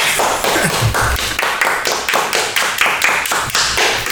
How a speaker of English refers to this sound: We did that last time too. Did we? We clapped? Yeah, we did.